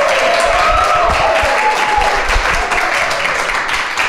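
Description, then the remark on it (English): A live audience gathered for a Christmas conversation applauds steadily, a dense wash of many hands clapping at once, fairly loud, with a few faint cheers or whistles rising above it. “Maybe a round of applause from the crowd just so you can hear this.”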